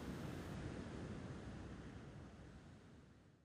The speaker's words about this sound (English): Imagine a small town in California, about 42,000 inhabitants. The sky is blue. If you listen carefully, you'll hear the breaking waves on the nearby beach. High waves, perfect to surf on.